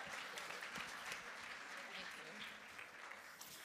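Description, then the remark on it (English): Steady audience applause at the Rock Church as a couple is welcomed to the stage, a dense wash of many hands clapping at once, sustained and fairly loud throughout, with faint voices mixed in beneath the clapping. “Give them a big round of applause for joining me today.”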